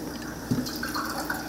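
Drinking water pours from a bottle in a short, steady trickle, in the small interior town of Headley, where tap water is under a do-not-consume notice. A soft gurgling splash comes near the start, with a faint liquid sound throughout. No one speaks.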